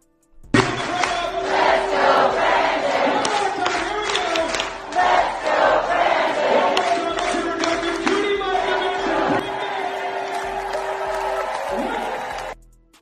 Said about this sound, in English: And what they're chanting is "Let's go, Brandon." Now, if you're confused by this, you're not alone.